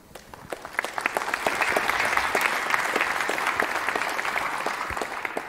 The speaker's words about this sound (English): Warm applause for them.